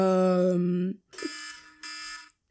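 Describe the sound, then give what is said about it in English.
An electronic alarm goes off in loud, steady bursts: a low buzzing tone first, then two bright, harmonic-rich beeps separated by short gaps, with no voices. “Oops. My alarm just went off.”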